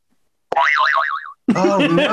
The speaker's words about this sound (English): There's a lot of pressure. Give me the zany whistle. Yeah, here we go.